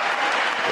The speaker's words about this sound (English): He just said nothing at all. And standing ovation again. What are they even clapping for?